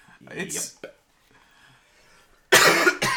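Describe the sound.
A person coughs hard, a loud harsh burst followed quickly by a second shorter cough, after a brief stretch of voice and a quiet pause.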